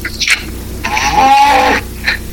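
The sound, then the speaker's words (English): Cattle at feeding time as a person feeds the cows, on a hot day of about 106 degrees: one loud, drawn-out bawl lasting about a second rings out, framed by short scraping, rustling noises. No one talks. “I'm good right now. I'm feeding cows.”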